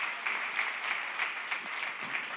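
An audience in Northern California applauds a guest speaker steadily, many hands clapping in a dense, even wash of sound at moderate volume with no voices over it.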